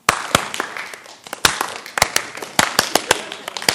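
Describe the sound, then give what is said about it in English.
An audience claps along at a preacher's request during a sermon, in sharp, loud bursts, the claps landing in a loose, uneven rhythm with scattered individual hands between the main beats, reverberant. “What if I would have come out and said, okay, everybody, ready? Let's do this. Clap with me.”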